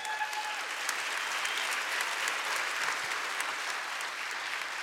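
An audience applauds steadily, a dense, even wash of clapping that holds at a constant level for the whole stretch, with a few cheers mixed in at the start.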